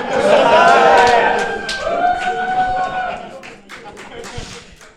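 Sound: conference audience applause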